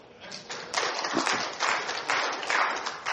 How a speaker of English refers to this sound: You can clap